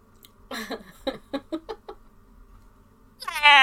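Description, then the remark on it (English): A person's voice imitates a hungry cat meowing behind a door: a drawn-out whiny call, a quick run of short pleading meows, then a louder, higher cry cut off at the end. Fairly loud. “It's hungry meowing.”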